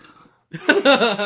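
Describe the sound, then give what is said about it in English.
A single loud, drawn-out burp erupts after a brief faint murmur, its rough, voiced croak wavering for most of a second. “I need to belch.”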